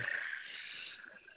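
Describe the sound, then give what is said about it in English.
A steady, rumbling purr from Double Chocolate, a cat, running continuously for about a second and a half, fairly quiet and slightly thin in tone, with no voices over it. “Yeah, he gets the purr.”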